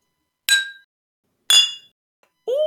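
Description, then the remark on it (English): Whiskey glasses clink together in a cheers toast, two bright ringing chimes about a second apart, followed by another sustained glassy ring, clear with no talking. “Shall we give our whiskeys a taste? Yes, please. Cheers.”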